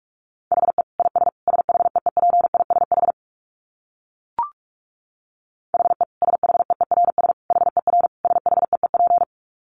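Fast Morse code at around 45 words per minute: a steady mid-pitched tone keyed in rapid dits and dahs, sent in two bursts separated by a pause with a single short click.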